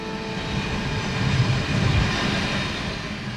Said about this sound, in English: Outside the restaurant in Wabamun, a freight train rolls by right along the lake as I meet up with another resident. You said you're used to that train. Yeah. I just tune it out now.